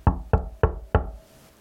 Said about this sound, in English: Then there was another knock at the door.